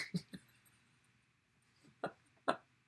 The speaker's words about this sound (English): I can't believe I'm getting heckled right now by a dog snore.